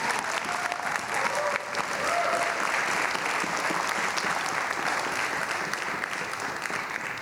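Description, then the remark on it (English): Sustained audience applause for everyone at the close of a day-long event, a dense wash of many hands clapping at a steady, fairly loud level for the full seven seconds, with faint crowd murmur mixed in. “So give everybody a round of applause.”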